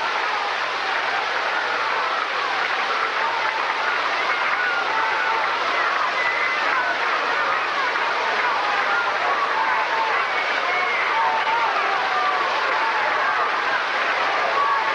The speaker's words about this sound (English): Red Sox fans coming to life. They haven't had much to cheer about.